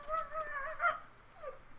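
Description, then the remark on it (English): A voice imitates a duck, giving a drawn-out nasal quack followed by a shorter one, fairly loud with no other sounds around it. “Quack.”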